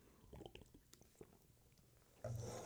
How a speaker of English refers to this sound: Another drink of water. Here we go!